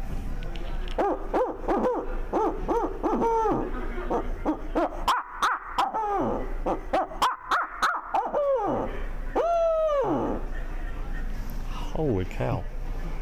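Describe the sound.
A 100% handmade owl hooter call, with a hand-made reed and tone board, is blown, giving a loud, rhythmic series of hooting notes, then several drawn-out, wavering hoots that slide downward, imitating a calling owl.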